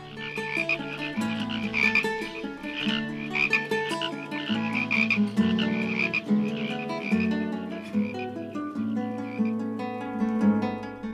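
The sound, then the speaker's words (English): A dense chorus of frogs croaking together, many overlapping voices in steady pulsing rhythms, loud and continuous throughout with no one speaking. “Young frogs, old frogs, every one of them began to sing. I never heard anything like it. Not a frog moved. They all just sat and sang.”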